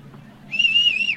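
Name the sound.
referee's whistle blown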